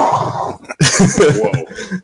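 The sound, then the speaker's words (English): A dog named Carl barks and growls playfully, wanting to play, a loud, rough stretch of vocalizing in two bursts with a short pause between them. “My dog wants to play.”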